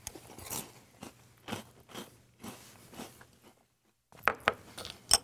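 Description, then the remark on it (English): Crunching and chewing of crispy Crunch Berries breakfast cereal by Captain Crunch: a steady run of crackly bites, a brief pause, then a few louder, sharper crunches near the end. No talking. “If I was going to pick one flavor of Crunch Berries to eat, I would probably pick red.”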